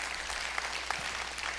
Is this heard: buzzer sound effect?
no